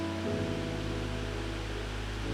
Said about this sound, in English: And Lord, right now as I'm listening to this, just this refreshing, cleansing rain on the roof. Rain upon us.